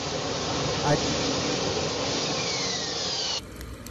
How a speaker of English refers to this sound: Now we got a jet landing. It's very loud, too.